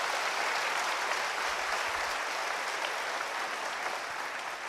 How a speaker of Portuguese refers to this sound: Vamos aplaudir a Jesus.